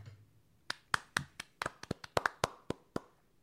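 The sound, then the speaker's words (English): A single person claps their hands about a dozen times for AJ Hinch and the Astros, sharp crisp smacks in a quick, slightly uneven rhythm, fairly loud against a quiet background with no talking. “I wanted to clap for AJ Hinch and the Astros.”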